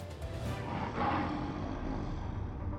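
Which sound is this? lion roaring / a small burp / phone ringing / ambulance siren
lion roaring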